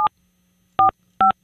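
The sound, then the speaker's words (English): Telephone keypad tones beep in quick succession as a phone call is dialed, three short dual-pitched presses with brief gaps between them, clear with a faint low hum underneath and no talking. “What, do we not pay the phone bill?”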